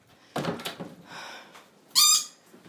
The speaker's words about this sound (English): Yes, bird. What do you reckon, Roxy?